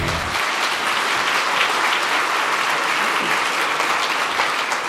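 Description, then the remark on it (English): A large audience at an IMSA motorsports gathering in the Elkhart Lake area applauds steadily, a dense, continuous wash of clapping that stays loud and even from start to finish with no voices breaking through. “Wow, what a fantastic crowd.”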